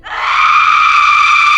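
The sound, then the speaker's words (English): A single loud, piercing shriek from a woman, high and wailing, sustained at full intensity for over a second with no other sounds around it. “He opened his mouth and tried to scream, but when he did, the sound was the sound of her screams.”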